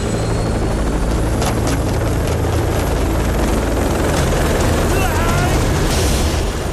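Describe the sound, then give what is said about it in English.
A helicopter from the 1992 film Super Cop, in the scene where Jackie Chan leaps from a Kuala Lumpur high-rise onto a ladder dangling from it, roars overhead, its rotor thumping in a loud, steady wash of noise that fills the whole clip, with faint voices buried beneath it. “He leaps from the top of a Kuala Lumpur high-rise onto a ladder dangling from a moving helicopter.”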